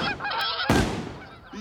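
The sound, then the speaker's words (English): A flock of geese honk in a quick series of nasal calls during a goose hunt, interrupted midway by a sudden loud, sharp burst that fades out, with a last honk near the end. “He killed two geese before his partners even had a chance to snug down their caps.”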